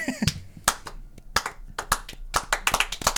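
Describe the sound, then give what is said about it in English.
An 80s golf clap sound effect: a small group claps politely and unevenly, a dozen or so soft, sharp claps spread over a few seconds, with no voices. “I didn't know they did the 80s golf clap.”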